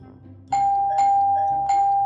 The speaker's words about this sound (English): That's the third time I've rung the bell. I'm just going in.